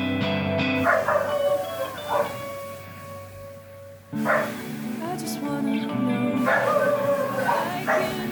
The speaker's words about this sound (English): is that a dog barking in the background? Oh, sorry, I think that's me in my open window. I was wondering if it was in the song,